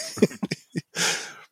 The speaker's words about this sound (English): It's from before. That's from the six. That's the 600th episode sneeze. I've saved it for posterity.